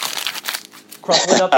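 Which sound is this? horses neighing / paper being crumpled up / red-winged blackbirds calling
paper being crumpled up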